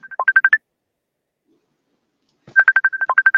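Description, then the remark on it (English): A mobile phone in a radio studio rings with a bright, rapid electronic ringtone for an incoming call from someone in the UK: a short burst of quick beeping tones, a pause of about two seconds, then a longer burst, loud with no talking. “Is that my phone coming through? No, it's someone from the UK hitting me up.”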